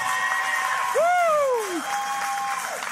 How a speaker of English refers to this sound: You know what? I just need to applaud God and applaud everyone. It's so good to be in the house of the Lord together this morning.